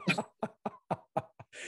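A rapid run of about six short, harsh coughs, fairly even in rhythm, ending in a breathy rasp, with no talking.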